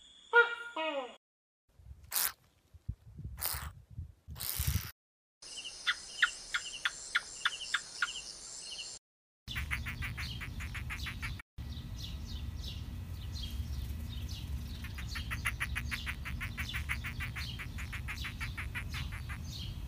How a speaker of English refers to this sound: Geckos have true, like, actual vocal cords. Whoa. Yeah. And so I will, in editing, sort of super cut in some calls of geckos, because it sounds much more like a bird chirping than like a monitor lizard hissing.